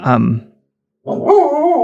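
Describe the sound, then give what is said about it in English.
A dog barks: one short, sharp bark, a half-second pause, then a longer, drawn-out bark that wavers in pitch before cutting off. “My dog doesn't approve of Joseph Stalin.”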